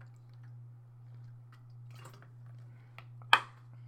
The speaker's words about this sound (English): But let me get some water. Hold on.